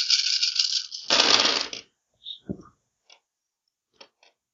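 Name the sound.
dice being rolled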